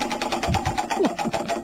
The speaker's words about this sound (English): Okay. Let's spin the wheel. All right. So what's it going to land on? Only the wheel will tell us.